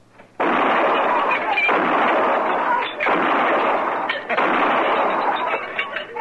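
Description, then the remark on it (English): A loud, sustained barrage of gunshots shattering glasses lined up on a bar, the crashing bursts running together for several seconds with only brief dips between volleys. “Pick off some of them glasses all lined up so nice and pretty.”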